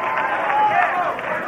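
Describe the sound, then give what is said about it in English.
An audience shouting together, a dense, steady roar of many raised voices that fills the whole moment without pause, loud and continuous with no single voice standing out. “I hear the shouting, but it scares me.”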